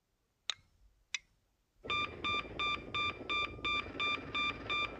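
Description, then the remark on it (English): Two sharp clicks, then a loud electronic phone signal: a steady run of about nine evenly spaced beeping tones pulsing over a hissy background, with no one talking. It is the signal that puts the Bat answer phone into action. “That's the signal for the bat answer phone to be put into action.”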